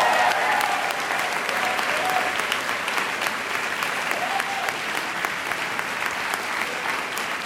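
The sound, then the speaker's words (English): Sustained audience applause at a commencement ceremony, given for parents, spouses, siblings, family and friends, a dense steady wash of many hands clapping at once, loud and continuous throughout with no pauses. “let's give another round of applause to the best supporting actors and actresses in our lives”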